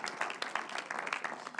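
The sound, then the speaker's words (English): A church audience bursts into steady applause to welcome a guest speaker coming up in the morning, many hands clapping at once in a dense, crackling wash of sound that holds at a fairly even level throughout. “Give him a round of applause as he comes this morning.”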